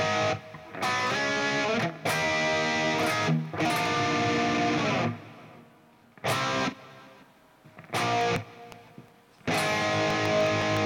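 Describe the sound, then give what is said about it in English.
A distorted electric guitar, played through an Axe FX and split into stereo with one side pitched 8 cents up and one 8 cents down, each feeding its own echo for a wide rock-guitarist style sound, plays loud, sustained bursts of chords and notes, separated by short gaps where fading echo tails trail off, with no voices present. “And then those are going into their own echoes, which are giving it a nice wide sound.”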